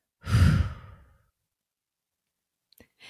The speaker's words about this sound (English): One of my top fave breathing hacks to ground and calm quickly. Exhale all the way.